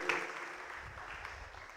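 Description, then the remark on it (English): Soft, steady audience applause, a dense patter of many hands clapping at an even level throughout, with no voices standing out, given for a girl as she returns to her place after a prayer. “Let's give her a round of applause as she hops on back.”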